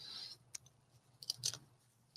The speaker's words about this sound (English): Oh, he took the bite. You can hear the he's crunching away.